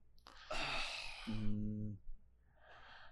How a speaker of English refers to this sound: Like how everyone gasped at the same time.